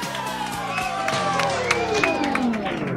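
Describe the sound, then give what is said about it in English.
An audience claps and cheers steadily to welcome a performer, a dense wash of many hands with scattered whoops and shouts rising above it, sustained at an even loudness throughout. “Thanks for clapping me up, you didn't have to do that.”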